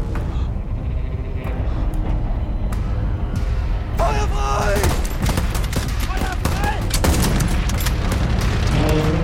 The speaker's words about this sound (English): Of sounds from the tanks, from the bullets, from the explosions, so there was already a lot of wildness going on, and you totally understood the brutality